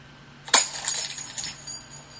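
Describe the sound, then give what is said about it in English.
A small glass capsule, held in the hand, snaps and shatters under the pressure of a thumb with a sharp crack, followed by a brief scatter of bright tinkling fragments that quickly fade. It is fairly loud, with no voices. “The tiny pressure of my thumb to break the glass will end everything.”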